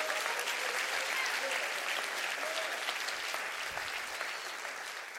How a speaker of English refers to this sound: Clap your hands to that. That's good stuff.